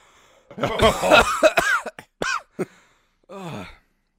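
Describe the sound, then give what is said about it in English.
A person puts on a string of exaggerated, voiced fake coughs, a loud cluster followed by a few separate hacks and one drawn-out final cough. “You have 30 more seconds of fake coughing.”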